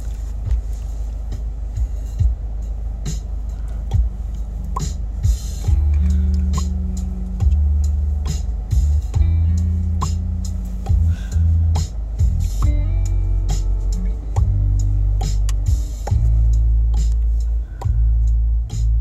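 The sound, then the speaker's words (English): Car interior while driving: a steady, heavy low-end rumble fills the cabin, with deep droning tones shifting pitch and occasional sharp clicks and taps. No one speaks. “Can y'all feel the vibes in this fucking car?”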